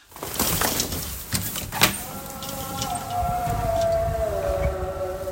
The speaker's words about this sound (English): I hear some background noise. Is that a siren or someone playing music? It's the muezzin. What's that? The call to prayer.